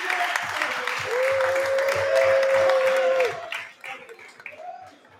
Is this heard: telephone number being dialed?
no